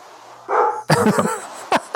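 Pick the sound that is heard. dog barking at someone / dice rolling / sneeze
dog barking at someone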